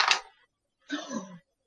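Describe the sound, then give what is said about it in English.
A short, sharp clatter of dice accidentally dropped onto a table rather than rolled, over in a fraction of a second. After a brief pause comes a half-second murmur that sounds like a voice. “Oops. That wasn't a roll. I just dropped the dice.”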